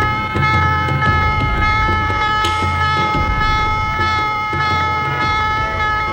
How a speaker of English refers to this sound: Shortly after noon, the calm of the day is broken at General Quarter Sound.